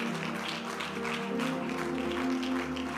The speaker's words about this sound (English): Give the Lord a clap offering again.